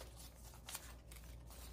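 Soft papery rustling and a quick riffle of the pages of a Victorian-style junk journal being flipped through, quiet, with a brief brighter swish midway and a low steady hum underneath.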